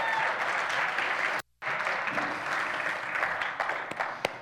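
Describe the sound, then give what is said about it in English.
Steady crowd applause for the speaker's daughter, a dense wash of many hands clapping at a fairly loud, even level, briefly cut off by a short gap of silence before resuming with a few sharper individual claps. “Y'all give my daughter a round of applause.”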